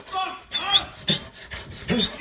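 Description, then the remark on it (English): A dog barks in a run of about five sharp, high-pitched, whiny bursts with short gaps between them, loud and insistent, with no one talking over it. “That dog is really annoying.”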